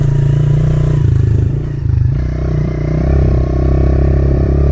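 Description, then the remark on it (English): A dirt bike engine idles and chugs at low RPMs, up to about 3,000 RPM, while warming up. Its low thrum rises and dips as the throttle is lightly blipped, with a rattly mechanical clatter throughout and no voices. “to 3,000 RPM, kind of just blipping it and just maybe going into first, second, maybe third gear, just putting along wherever I am, whether it's the yard or before getting onto a trail, just going really slow.”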